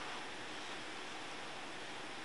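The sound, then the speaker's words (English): Gentle rain patters in a soft, steady hiss, even and unbroken for a couple of seconds, quiet throughout with no voices or other sounds. “And it rains. A gentle pattering consistency.”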